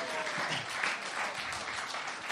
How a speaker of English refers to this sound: Give him a clap because he landed that bike.